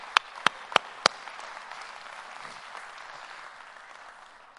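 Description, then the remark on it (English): A church audience claps hands to the Lord: four sharp, evenly spaced claps ring out first, then settle into a steady wash of many hands applauding, with no talking. “Come on, clap your hands to the Lord and give him a little prayer.”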